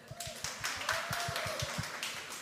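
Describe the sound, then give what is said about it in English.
An audience claps hands during church worship in a steady, brisk rhythm, the sharp claps coming several per second over a soft low thump and a faint sustained tone, with no talking. “That's why when we're in the middle of worship, we can actually clap our hands.”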